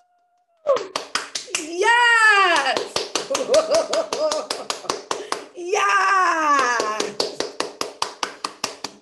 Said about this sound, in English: And one thing before we get into this conversation this morning, it's in my spirit to tell you guys to actually clap for yourselves.